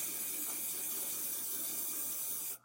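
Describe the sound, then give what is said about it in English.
A steady hiss of hairspray from an aerosol can, one continuous burst lasting a couple of seconds before cutting off abruptly, with no talking. “spray it with some hairspray.”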